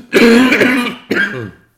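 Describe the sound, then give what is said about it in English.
A person clears their throat and coughs, two rough, loud bursts separated by a brief pause, with no talking. “I have to cough.”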